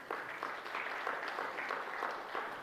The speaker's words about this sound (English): Let's have another big round of applause for our worship leader